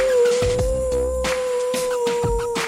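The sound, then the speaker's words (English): A person's voice imitates a coyote howl, a single steady, sustained tone held for a few seconds, fairly loud, with no other talking. “I think the coyote's cords are a little rusty.”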